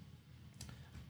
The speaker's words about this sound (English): Listen to this dice.